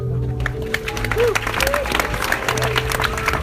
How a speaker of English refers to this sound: Tonight, we will be demonstrating our experimental range of body enhancing elixirs. Please give a round of applause for our head of research